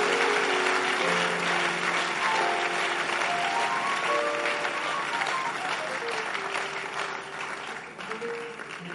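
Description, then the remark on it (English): An audience claps steadily throughout, a dense, continuous wash of many hands, with a sustained melodic tone, like singing or an instrument, drifting over the clapping. “Are you clapping or you are doing something like clapping?”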